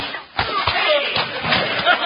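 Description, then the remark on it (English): A scuffle in which a man is knocked out cold, with a few sharp, heavy punches landing one after another, each a dull smack over a steady rough rumble of movement and muffled voices. “Well, you knocked him colder than a wolf's howl at Christmas time”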